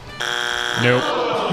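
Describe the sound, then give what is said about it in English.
A harsh, flat game show wrong-answer buzzer blares for about a second at a contestant for taking too long to answer, rich with rasping overtones, and a voice starts talking over its final moments. “How about I just buzz you for taking too long?”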